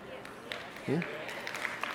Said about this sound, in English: Are you clapping?